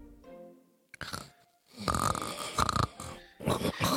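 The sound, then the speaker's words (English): Snoring that sounds high-pitched and piercing, loud breathy bursts repeating in an uneven rhythm, preceded by a quieter low rumble of softer snoring. “That high sort of more piercing snore than a rattling snore.”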